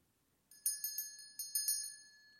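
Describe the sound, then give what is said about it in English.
A church bell rings out on Christmas Day, calling people to Christmas worship, in bright, ringing strikes, two quick groups of three, each tone decaying with a lingering shimmer. The sound is clear, with no voices. “The first church bell calling people to Christmas worship.”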